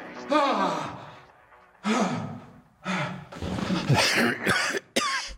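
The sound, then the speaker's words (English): A series of loud coughs in uneven bursts, with breathy, sighing gasps between them and a final sharp cough at the end; no one speaks. “Cough.”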